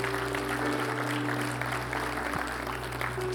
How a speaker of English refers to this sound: Yeah, give the Lord a big round of applause this morning. Hallelujah.